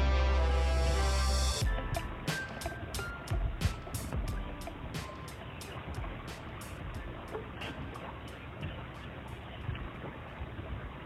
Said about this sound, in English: You're hearing sounds from the Lumber River, recorded by the Lumber River State Park staff.